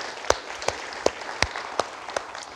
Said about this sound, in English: And so absolutely, give that round of applause.